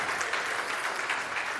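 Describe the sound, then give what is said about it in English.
A small group of people clapping together, a steady patter of hand claps filling the whole moment at a moderate level, with no voices over it. “felt like a couple people wanted to clap, but I think that's okay.”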